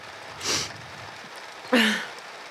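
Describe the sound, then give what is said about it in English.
Heavy rain hisses steadily throughout, a dense, even wash of noise, broken by two brief breathy bursts from a person, one ending in a short voiced sound. “It's raining really hard.”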